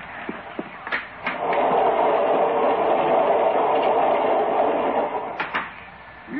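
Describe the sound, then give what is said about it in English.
A train rumbles steadily along the rails in a continuous, fairly loud roar, with a few sharp clacks and knocks near the beginning and again toward the end. “They may have to stop the train and let me go around outside.”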